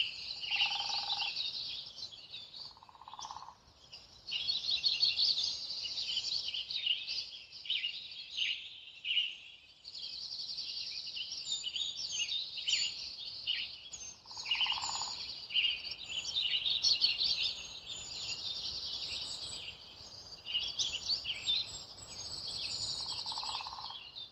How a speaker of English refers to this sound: You can still hear the trills of the juncos down below, but they're so much quieter up here.